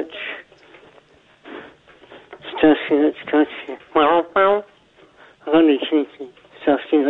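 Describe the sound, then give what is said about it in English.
A voice over a narrow, tinny phone line talks in bursts, with the speech smeared and repeated by a doubled echo that trails each phrase. “because I'm getting the echo on my line, and then I'm getting a double echo on his phone.”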